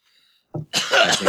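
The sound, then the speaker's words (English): A loud cough: a short throaty burst followed by a longer, harsh, raspy hack that runs to the end, with no talking. “I'm going to cough for a while.”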